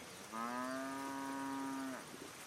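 A single long, steady moo from a white cow with big black spots on a sunny hilltop, lasting about a second and a half, soft and mellow, with no voices and only quiet background around it.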